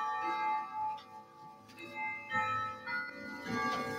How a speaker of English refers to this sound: Hold on a sec. Got a clock going off here. Ding, ding, ding. What time is it?